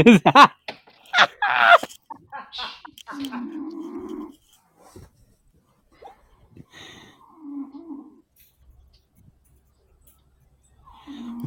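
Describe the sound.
A dog named Milk Dog snores, slow low rumbling snores repeating every few seconds with quiet pauses between, after a brief burst of louder voice-like sounds at the start.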